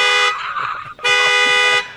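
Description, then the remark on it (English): A loud car horn from a car alarm blares in two long blasts, the first cut short by a brief gap before the second sounds again, steady, like an alarm going off. “You're listening to the Weekend Gardener, not a demonstration of horns. Somebody's stealing a car.”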